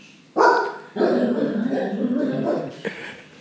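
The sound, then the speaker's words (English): A dog growls, a short sharp burst followed by a longer rumbling, drawn-out growl that tapers off, with one more brief huff at the end. “No, he just kind of growled a little bit.”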